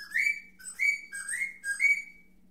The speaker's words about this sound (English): Speaking of octopus, I'll get to some more animals. Another bird whistle.